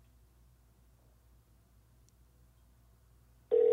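After several seconds of faint low hum, a loud steady phone tone suddenly starts at the very end, like the first ring heard on an outgoing call, cut off almost immediately.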